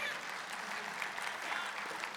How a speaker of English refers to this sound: So if you can clap for them.